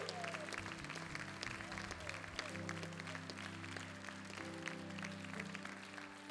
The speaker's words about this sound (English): See, when you clap your hands, in your hands when they come together, it creates a wave of sound that moves through the atmosphere.